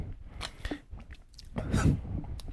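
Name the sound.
sipping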